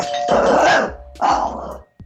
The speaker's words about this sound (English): Why did she ring the doorbell like 8 times? That was so unnecessary.